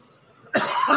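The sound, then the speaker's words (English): After a brief near-silent moment, a loud, harsh cough erupts, rough and raspy as it carries on to the end, with no talking. “Let's get some music going to hide part of this cough, bro.”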